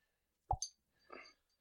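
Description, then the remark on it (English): A father makes a short, hollow pop with his mouth, followed by a quick higher click, then a faint breathy rustle and a sharp onset at the very end. “Dad, do your pop noise.”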